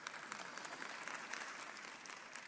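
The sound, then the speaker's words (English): An audience applauds steadily, a dense wash of many overlapping claps holding an even, moderate loudness throughout, with no voices breaking through. “Thank you for the clap.”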